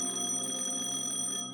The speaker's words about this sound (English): Office phone rang.